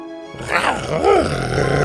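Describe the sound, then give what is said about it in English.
Buck growls while wrestling with a boar head: a low, throaty growl rising and falling in rough, rumbling waves, with a snarling pitch that swoops up and down over a steady noisy background. “Buck was growling and wrestling with the boar head.”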